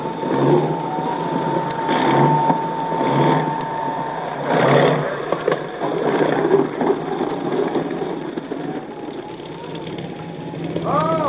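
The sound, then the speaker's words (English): A small motorboat engine drones steadily as it approaches, amid broad, washy noise like wind and water, holding a fairly even loudness throughout with faint tonal whines and a brief higher sweep near the end. “on his way out in a small boat to tell you the whole story.”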